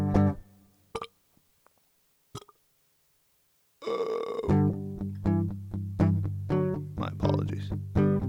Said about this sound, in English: I feel a burp coming, so I'm gonna have to wait.